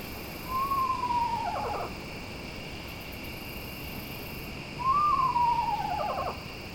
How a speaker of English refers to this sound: Screech owls are the type that live in holes, basically in cavities of trees. So it's stereotypical owl in a cavity is this kind of owl.